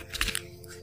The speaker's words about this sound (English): But the message for me, I'm going to clear the energy of this card, of these cards, I mean. Okay, I'm literally pulling the energy from that previous card and picking one for myself. You can hear me shuffling.